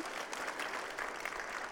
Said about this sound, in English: So congratulations on you. That new role. And so, yeah, applaud that.